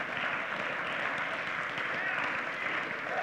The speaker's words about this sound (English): You know, nobody's clapping as loud as the children's workers.